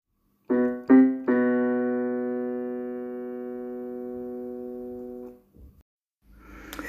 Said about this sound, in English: Sorry, that was me messing about on my keyboard. I'm just really think I'm going to enjoy doing that, making up sounds.